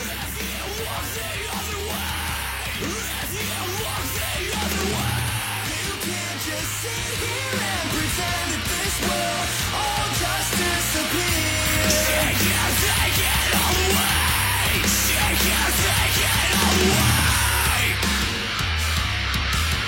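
A loud, dense rock band track with heavy distorted guitars, pounding low end and harsh screamed vocals, playing continuously at full intensity for the whole stretch.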